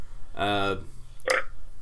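A single short, throaty burp rumbles out in the background, voiced and fairly loud, followed a moment later by a brief hissy burst of noise, with no speech.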